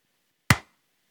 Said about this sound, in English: I'm going to clap. Because that's a good sound spike to find to know where to cut. I didn't hear that clap, so I'm curious if your mic caught that.